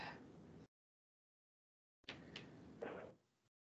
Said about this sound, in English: Door.